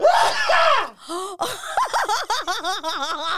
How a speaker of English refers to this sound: Is that a great sneeze? Oh, my God.